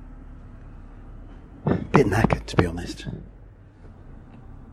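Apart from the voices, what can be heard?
inside a moving bus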